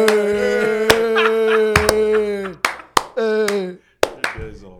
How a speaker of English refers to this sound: It's a slow Thierry clap. Henry.